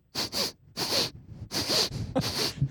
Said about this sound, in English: Well, are you not going to sniff her?